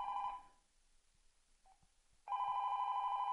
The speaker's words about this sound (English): Like, my phone will ring. Here we go.